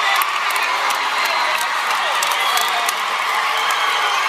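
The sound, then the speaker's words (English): A large audience at the Billboard Awards cheers and whoops continuously after a 19-year-old performer says his age, a dense wall of crowd noise with scattered shouts and claps, loud and sustained throughout without any clear single voice standing out. “He just got people just cheered because he's 19.”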